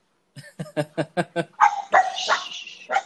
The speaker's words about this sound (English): His dog is barking.